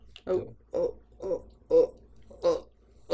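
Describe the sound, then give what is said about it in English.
A voice makes a string of wet, gurgling slurps, six close, loud bursts in a steady rhythm about half a second apart, imitating a gargling, gulping sound. “I was going to make disturbing slurping sounds. The gurk, gurk, gurkle, gurkle 9000.”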